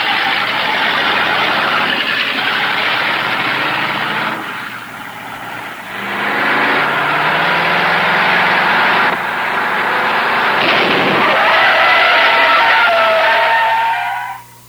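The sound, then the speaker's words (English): A loud muscle car engine roars and shifts in pitch, then near the end a high tire squeal rises as the car brakes hard to a stop in a panic brake stop test pitting the SS-396 against the GTO and GT, fading abruptly. “First, Tony Tiger challenged me to a panic brake stop.”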